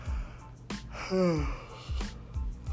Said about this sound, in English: And I'm yawning.